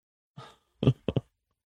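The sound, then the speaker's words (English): A holding cell door swings shut with a soft whoosh and a solid thud as Captain Adrian and the guards leave, followed quickly by two sharp lock clicks, then silence. “Captain Adrian and the guards leave with him, the door closing behind them with the distinctive click of a lock.”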